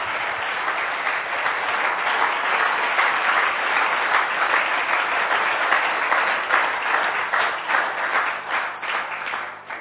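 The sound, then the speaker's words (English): Sustained applause from a sizable crowd for missionaries and their work, dense and steady for several seconds before thinning out slightly toward the end. “May we give a clap offering to these missionaries for the wonderful work that they are doing.”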